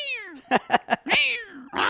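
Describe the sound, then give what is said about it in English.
A cat meows several times in quick succession, a drawn-out falling meow, three short chirpy bursts, then another long wavering meow, fairly loud with no talking. “You really should make a piano cat app that every time someone it just goes...”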